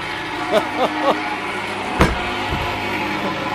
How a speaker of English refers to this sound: And since the weather is better than it was yesterday, I'm going out for a walk. There's the big oaken front door, and wow!